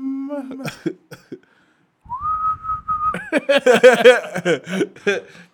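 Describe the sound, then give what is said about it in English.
Someone whistles a short high-pitched tune from a song, holding a long steady note before a burst of warbling, breathy notes that trail into quiet chuckling. “I hate the whistle in that song, dude.”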